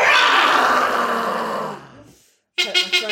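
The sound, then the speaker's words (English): People let out a long, loud, rasping roar in imitation of a lion, fading away over about two seconds, followed by a brief pause and then a few short bursts of laughter or chatter. “Should we do a lion's roar?”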